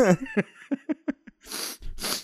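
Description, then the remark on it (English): Two loud, airy nasal sniffs in quick succession from someone with drips from COVID, following a few short clipped vocal sounds. “Why are you sniffing so much?”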